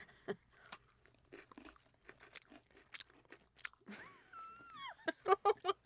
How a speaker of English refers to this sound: How far away from this microphone do I have to be before it stops picking up me chewing? I think right where you are is really good.